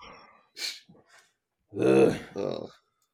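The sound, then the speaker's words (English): A voice blows a mouth-made fart noise, a buzzy, wet raspberry in two bursts, the first longer and louder, followed by a shorter one. A brief breathy hiss comes before it. “Fart noise.”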